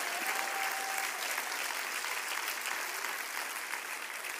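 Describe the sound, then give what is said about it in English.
An audience claps their hands to the Lord during a sermon in a dense, steady wash of applause that holds for several seconds before easing slightly at the end, with a faint brief tone near the start. “And if you believe that, clap your hands to the Lord.”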